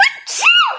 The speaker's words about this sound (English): Queen of sneezing. Gesundheit.